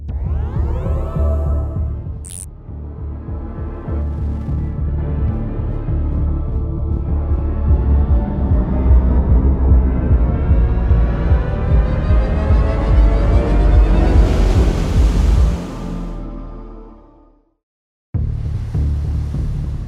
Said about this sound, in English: we want you to create sounds that kind of give you the ambience that you want when you're driving an EV